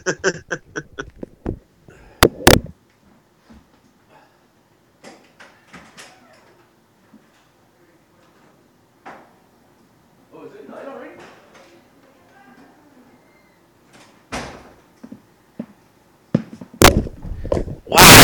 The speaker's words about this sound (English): Hang on one sec. Yeah. Someone's knocking on my door.